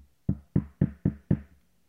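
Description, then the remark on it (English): Five quick knocks on wood in an even rhythm, each a short, solid thud with a woody resonance, fairly loud, with no talking over them. “That was my knock on wood.”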